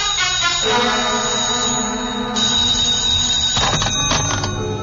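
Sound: telephone ringing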